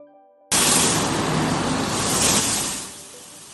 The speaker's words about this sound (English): This dog's got it figured out. He really likes his car wash.